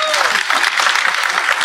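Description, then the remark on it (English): An audience claps steadily for the panelists at the end of a .NET Rocks show, under two seconds of a dense, even wash of many hands at a consistent moderate loudness, with no one speaking over it. “One more round of applause for our panelists. Give it up.”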